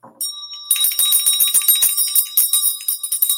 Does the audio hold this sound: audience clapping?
no